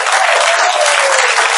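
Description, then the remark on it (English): Steady audience applause, many hands clapping together in a dense, loud, even wash of sound that holds without pause for under two seconds, with no voices standing out; a small golf clap led to bring performers up to the stage. “So let's maybe start off like a small golf clap at first. Then maybe like a baseball game.”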